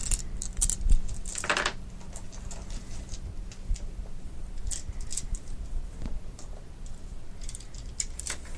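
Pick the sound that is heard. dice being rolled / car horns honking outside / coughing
dice being rolled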